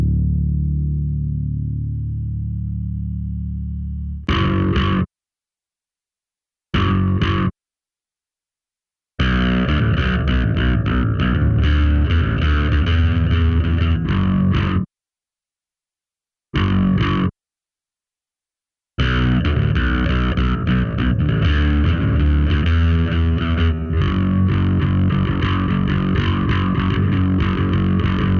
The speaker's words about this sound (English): Oh, look, there's distortion on the bass in this song, making it not the greatest example, I guess, of isolating your frequency ranges for different instruments.